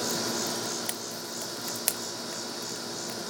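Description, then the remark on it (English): Charcoal beginning to burn in a grill: a steady, even hiss with a few sharp, sporadic crackles and pops scattered through it. No one speaks. “Okay, maybe you can hear the charcoal already starting to crackle.”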